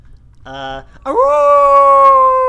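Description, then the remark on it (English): A person imitates a wolf howl: a short voiced yelp, then a loud, long howl that swoops upward in pitch and holds steady to the end. “I'm not howling.”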